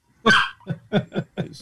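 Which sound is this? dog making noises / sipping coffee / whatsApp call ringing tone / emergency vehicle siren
dog making noises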